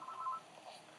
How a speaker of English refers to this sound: Also, dang it, phone. Shut up, bitch!